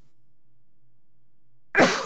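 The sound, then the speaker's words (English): A single loud, sharp sneeze bursts out near the end after a stretch of near silence, cutting off abruptly. “Bless you.”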